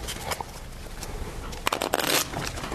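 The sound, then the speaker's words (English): A deck of cards is shuffled during a card trick: a few sharp papery snaps, then a quick rising flutter of crackling riffles lasting under a second, over a steady low background rumble. “All right, I'm going to cut into the deck. Shuffle the cards.”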